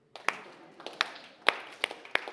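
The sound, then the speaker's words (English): A slow clap: about six sharp, distinct hand claps at a deliberate pace, picking up slightly toward the end, with a little echo and no talking. “Speaking of slow clap, can we just...”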